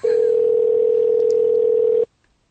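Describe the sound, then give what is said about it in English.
A single steady telephone ringing tone, a loud, even hum lasting about two seconds before cutting off into silence, heard on its own with no voices. “So the women, girls always let the phone ring a few thousand times.”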